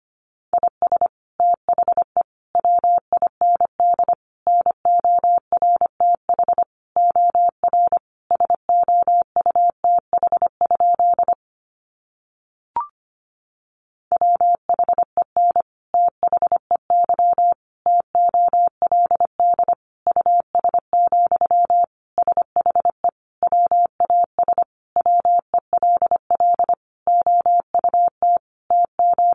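Morse code sent at a brisk 25 words per minute: a single steady mid-pitched beep keyed into rapid dots and dashes, broken by one short pause with a faint click partway through.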